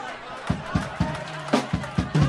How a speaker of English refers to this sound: Damn, the crowd goes crazy at Oxnard.